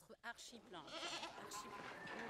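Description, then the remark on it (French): Several goats bleat at feeding time on a farm in Beauce, France, in a busy, overlapping chorus, their wavering calls loud, running continuously for a couple of seconds over a steady farmyard background. “L'heure de nourrir les chèvres vient de sonner quand nous retrouvons Cédric Benoît dans sa ferme de Beauce”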